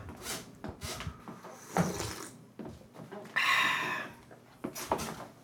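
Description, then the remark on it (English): A door being closed: a few light knocks and bumps, a brief scraping swish, then a final soft thud, fairly quiet overall. “Close the door.”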